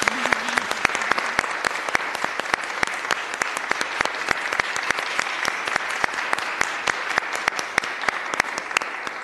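An audience applauds steadily, many hands clapping in a dense, even patter at moderate loudness that holds for the whole stretch with no voices over it.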